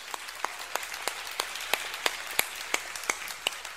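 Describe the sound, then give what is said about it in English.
A church audience applauds to show appreciation for the dads on Father's Day, with a steady, evenly spaced clap cutting through a soft wash of many hands clapping. No one speaks, and the applause stays fairly quiet throughout. “And by the way, just before we get started today, I'd like you to just kind of put your hands together and give all of our dads a great applause of appreciation.”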